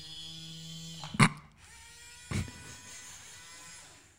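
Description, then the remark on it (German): A small orange-and-black robotic arm, about 15 cm tall, gives off a steady, thin electric whine from its motors, with two short clunks about a second apart as it shifts position. No one speaks. “Also der Roboterarm, für die Leute, die nur zuhören, der schaut aus wie von der M48.”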